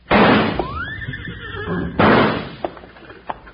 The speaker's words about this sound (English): Hey, it worked. Them two horses took off like they were heading for the barn.